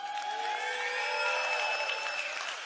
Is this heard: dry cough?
no